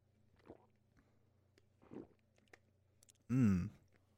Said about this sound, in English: But anyway, let me take a sip of water.